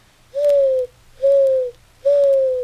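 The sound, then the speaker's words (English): A human voice imitates a dove's cooing: three evenly spaced, soft, hooting coos, each about half a second long, clear with no other talking. “Dove.”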